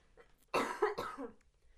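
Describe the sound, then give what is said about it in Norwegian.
A fairly loud cough in two or three quick harsh bursts, followed by a brief throaty rasp as it settles, with no talking over it. “Jeg må bare hoste.”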